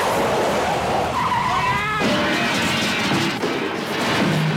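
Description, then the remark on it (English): Loud, continuous tire squealing as a car skids and is run off the road, with a rising, wavering screech over engine and road noise, sustained for several seconds. “I steered in her direction, and I ran her off the road!”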